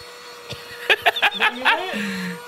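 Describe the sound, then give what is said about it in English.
A small portable vacuum cleaner from the TikTok shop whirs steadily with a constant motor hum as it cleans a pillow, while someone breaks into short bursts of snickering laughter over it. “Who you know has a portable vacuum cleaner?”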